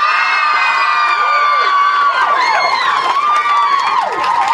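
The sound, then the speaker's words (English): A packed audience in New York erupts in loud, sustained cheering to vote that Harry will live, with high-pitched shouts and whoops rising and falling over a constant roar of many voices for several seconds. “If you think Harry will live, make your noise now.”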